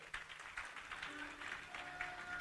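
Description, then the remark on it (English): An audience claps for themselves, producing a dense, steady patter of many hands that holds at an even level for a couple of seconds, with faint voices mixed in beneath it. “Clap for yourself.”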